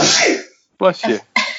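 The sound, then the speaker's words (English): A single sharp, breathy sneeze bursts out, followed after a brief pause by a few words of talk. “Bless you.”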